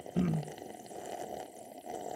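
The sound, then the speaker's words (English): A short, low, throaty burst opens into a steady, wet sucking noise as someone slurps a drink, the slurp running on for a couple of seconds at moderate loudness with no talking. “I'm going to get my slurp in.”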